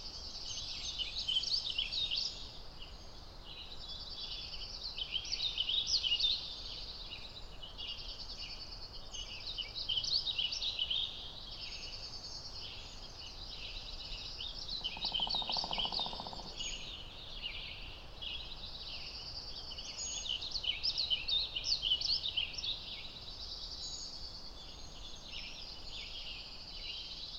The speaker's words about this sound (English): Remember our warbling vireo? You know, if I see you, I will seize you and I'll squeeze you till you squirt. They're up here with us too.